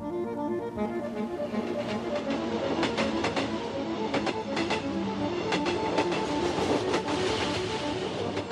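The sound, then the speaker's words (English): A train travelling back to Spain rolls steadily along the rails, a continuous rumble and hum broken by paired clickety-clack beats from the wheels passing over track joints, with no voices. “Imagine Paddy's train thoughts on the way back to Spain.”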